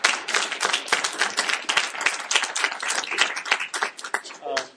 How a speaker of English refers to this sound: can we give Jung and the team a warm round of applause